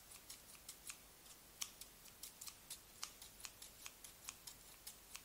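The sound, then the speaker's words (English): Rapid, crisp snips of large scissors slicing through wrapping paper, a steady run of about two dozen short cuts at an even rhythm, fairly quiet with no voices. “And take our scissors.”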